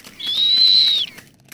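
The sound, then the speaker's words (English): A rough-legged hawk gives one drawn-out, high whistled call that holds steady for nearly a second, then slurs downward and fades. It is clear, with no voices. “Truth is, I've never seen a rough-legged hawk before, or let alone heard one.”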